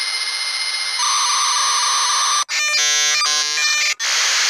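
A dial-up modem handshake sound effect, as heard when logging onto the internet, screeches loudly, with steady high tones shifting into harsh, stuttering bursts of layered pitches and brief dropouts, a shrill electronic chatter with no voices over it.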